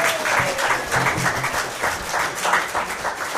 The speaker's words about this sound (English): All right, big round of applause for Martin Zaltz-Ulswick.